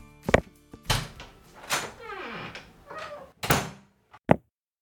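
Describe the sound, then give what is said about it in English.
A studio door being handled and opened: several sharp wooden thunks, a drawn-out creaking squeal of the hinge in the middle, then a few final knocks and bumps. “I opened the door and there was a package.”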